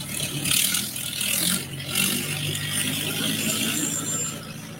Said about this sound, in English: We're live in Dubuque, Iowa, everybody. Hawkeye Vintage Farm Machinery Association. A little tractor pulling on this beautiful Sunday afternoon.